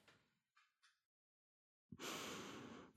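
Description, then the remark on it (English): A person performs exaggerated unconscious breathing: a breathy exhale and two short puffs, a pause of silence, then one long, loud, raspy inhale. “The breath was perfect.”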